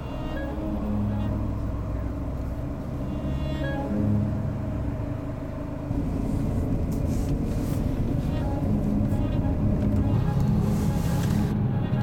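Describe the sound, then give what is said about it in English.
A steady low rumble of idling engines in slow, backed-up traffic over the Mississippi Bridge in the evening, continuous, with a dull drone and some wind buffeting the microphone in the second half. “Traffic's backed up over the Mississippi Bridge.”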